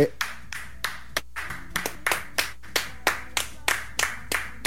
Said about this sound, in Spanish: Muy bien, la gente que aplaude.